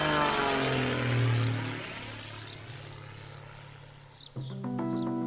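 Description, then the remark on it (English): An old early-1920s propeller plane of wood, wire, steel, aluminum, cloth and pressed cardboard, with no brakes or steering wheel, taken up by aviator Bessie Coleman at the Caudron Brothers School of Aviation in Le Cotoy, France. Its engine drones with a deep, buzzing hum that swells loudly, eases off, then abruptly roars back into a steady, higher-pitched whine. No voices. “Today is her first time taking the plane up, up into the sky.”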